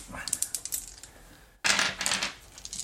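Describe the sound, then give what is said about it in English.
A handful of 18 dice clatters across a hard table: a rapid scatter of sharp clicks, then a louder rattling burst partway through, tapering into a few last taps. Fairly loud, with no talking. “I need 18 dice. Oh, God. Here, I got 18 dice.”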